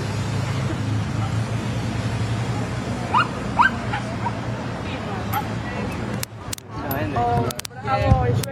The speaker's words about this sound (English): the Queen loved dogs and a little dog barking